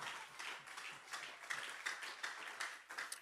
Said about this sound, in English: One more time, would you clap your hands and make a declaration of faith right now?